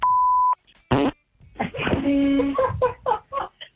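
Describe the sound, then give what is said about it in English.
A single electronic voicemail beep tone, then a short blast and a long, buzzy, sputtering fart into a phone lasting a couple of seconds, loud. “Wait, did somebody just fart on their phone?”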